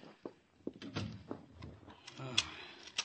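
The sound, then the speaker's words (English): A door is pushed shut, bolted and locked, a quick series of knocking clunks and metallic clicks with a faint murmur of voices underneath. “The door bolted, locked.”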